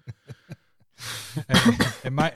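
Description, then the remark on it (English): A person coughs: three short, light coughs first, then a longer run of harsh, raspy, hacking coughs, like an exaggerated smoker's cough, with no talking. “coughing, mine's going to be a smoker's cough.”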